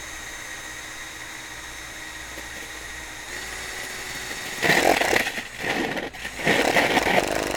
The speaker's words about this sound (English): Firmly hold the gourd with one hand. Line up the mandrel that is in the center of the bit and start your drill.